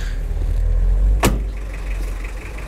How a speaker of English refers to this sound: I guess they've seen like a wire on the road, and they think it's a mine, so we've stopped. They're all getting out of the car, make sure everything's okay.